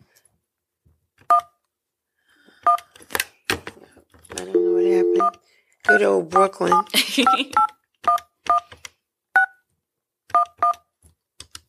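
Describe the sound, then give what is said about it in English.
A series of short two-tone telephone keypad beeps as someone dials to call a person back after a dropped call, pressed one after another at an uneven pace, with a man talking briefly in the middle of the sequence. “I think we lost Carl, so I'm going to call him back.”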